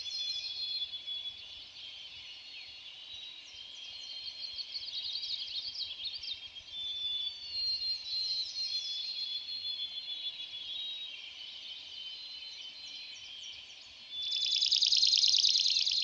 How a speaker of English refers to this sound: That rattling song is from another sparrow, a swamp sparrow.